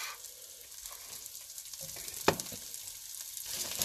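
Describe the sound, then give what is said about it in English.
Garlic and broccoli frying in a 12-inch pan with a steady, crackling sizzle, broken by a sharp clatter as they are tossed partway through. No one speaks. “So right now I've got some garlic and broccoli. I'm going to toss that around.”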